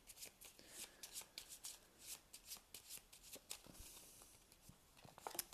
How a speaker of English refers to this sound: So I've shuffled this exploration deck.